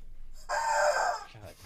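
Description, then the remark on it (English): A rooster crows once, a loud, sustained cock-a-doodle-doo lasting under a second, with a voice briefly following at the end. “Stupid fucking chicken.”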